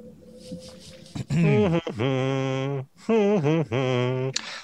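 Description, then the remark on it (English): A person hums a short tune, holding loud, steady notes in two phrases separated by a brief pause, with the pitch sliding between notes. “Oh, we just got another copyright strike from me. Yeah, from your humming.”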